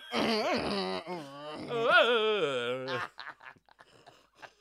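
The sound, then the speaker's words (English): A voice imitates a 56K dial-up modem, with loud warbling, sliding tones for about three seconds, then a run of short, hissy, crackling bursts that fade out. “You've just been making simulating term noises.”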